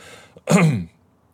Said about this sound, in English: I felt the cough coming on.